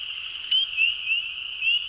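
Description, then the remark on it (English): Spring peeper frogs calling: a steady high-pitched chorus with several sharp, rising peeps repeating at a quick, regular pace, with no talking. “Yep, that's it. That's what he sounds like.”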